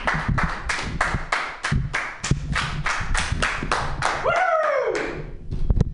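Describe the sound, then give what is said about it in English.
Sparse, steady clapping from a small comedy show audience applauding a comic, loud evenly spaced claps for several seconds, then a brief rising and falling whoop before the clapping trails off. “So let's give him your round of applause, all two of you.”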